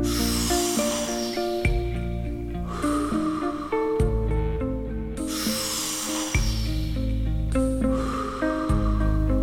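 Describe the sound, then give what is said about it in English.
Long, deep breaths rise and fall in slow airy swells, each inhale and exhale drawn out over a few seconds, layered over a steady, sustained musical drone. No one speaks. “Long and deep inhales.”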